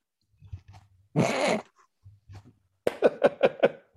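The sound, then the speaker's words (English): A person imitates a cat hacking up a hairball: a long raspy, breathy retch, then a quick run of five sharp, guttural coughs, fairly loud, with low grunts between. “It's like when a cat's got a hairball.”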